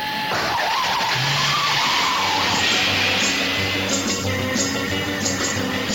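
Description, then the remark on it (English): The Batmobile's engine roars and revs loudly, with a high whining tone and tires squealing as the vehicle peels away in a continuous burst of noise. “Atomic batteries to power. Turbines to speed.”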